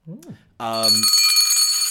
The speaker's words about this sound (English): Hang on, is that a tugboat approaching? It's my special bell. Sorry, forgot you brought that. It used to be in a tugboat.